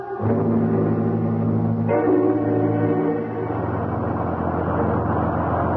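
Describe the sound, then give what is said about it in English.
A bus with no driver drives along with a loud, steady engine drone, its humming pitch shifting a couple of times like gear changes, continuing unbroken throughout. “We've been on this godforsaken bus for almost 20 minutes. It keeps on going without even a driver.”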